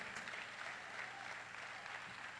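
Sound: audience clapping hands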